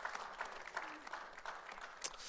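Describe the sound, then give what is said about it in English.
An audience applauds, a steady wash of many hands clapping with a few sharper claps standing out, sustained evenly for a couple of seconds with no voices over it. “Round of applause.”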